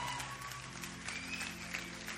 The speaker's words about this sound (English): Now, if you're wondering what exactly it is that they're all clapping about, you're about to find out. Believe it or not, a little spoiler here, they did a little … thing at their church where people had blue paint on and they had drums